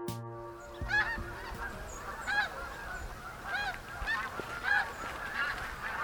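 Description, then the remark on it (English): Canada geese honk repeatedly in a steady chorus, harsh nasal calls arriving every second or so over a low background rumble, with no voices. “Now, if you live in Manitoba, you are well aware of Canada geese.”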